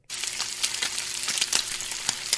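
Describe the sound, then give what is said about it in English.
A sizzle sound effect: steady crackling sizzle of bacon frying in a hot pan, with dense hiss and scattered sharp pops throughout, moderately loud, no voices. “Okay, give us a sizzle there, Grady.”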